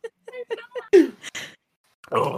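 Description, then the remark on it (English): Someone mimics a revving chainsaw with their voice: a string of short, buzzy vocal bursts, a loud rasping rev that drops in pitch, then a sustained gritty drone after a brief pause. “What noise does a chainsaw make?”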